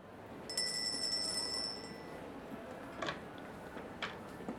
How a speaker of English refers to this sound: I loitered outside the door until my tardiness prompted me to ring the bell.